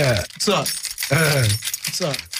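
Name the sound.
keys jangling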